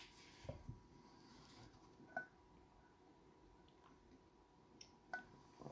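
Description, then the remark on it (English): Soft sips of water by a person whose mouth got dry: a few faint wet slurps and small swallowing clicks spaced a couple of seconds apart, otherwise quiet with no talking. “Sorry, my mouth got dry. I took a sip of water.”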